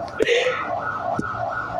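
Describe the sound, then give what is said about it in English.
A wavering electronic alarm siren sounds steadily at moderate volume, its tone holding over a noisy indoor background with faint voices and a couple of sharp knocks. “I like that alarm. Very in sync.”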